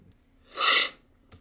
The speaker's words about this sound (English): Sorry for the constant sniffling. I have had the worst allergy attack that I have ever had, ever, this past weekend, and it's still very bad. It's not COVID, I promise. I got tested. I'm negative.